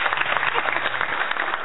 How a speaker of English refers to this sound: So it, where's our applause button? Oh, I have one somewhere. Where is it? Okay. That was worthy of an applause.